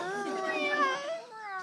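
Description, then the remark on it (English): Four Siamese cats surrounding a person meow and yowl, their loud, drawn-out wailing calls overlapping continuously and sounding almost like a crying baby. “Four cats? That is noisy. They're surrounding me. Those are Siamese, aren't they?”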